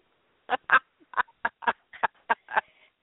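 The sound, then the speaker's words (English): A string of about eight raspy duck quacks from pet birds in quick, uneven succession, clear, with short gaps between calls and no voices. “They were so quiet. I thought you had given up and eaten your birds.”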